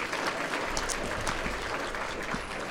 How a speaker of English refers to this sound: it is my honor to be your master of ceremonies this evening for the 22nd annual Damon Runyon Award Banquet. 22nd annual. That's worth applauding.